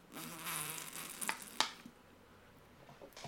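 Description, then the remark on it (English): A wet, hissing slurp of water lasting about a second and a half, with two sharp sucking clicks near the end, then quiet with a faint rustle. “That was me slurping water.”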